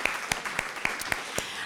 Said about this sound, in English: They both helped organize this event, so round of applause to them.